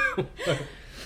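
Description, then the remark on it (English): Heavy, breathy huffs through an open mouth, two quick voiced exhales in about a second that could almost pass for a short chuckle, from a person breathing through a burning mouth after a spicy bite. “That noise you're hearing isn't me laughing. It's breathing that.”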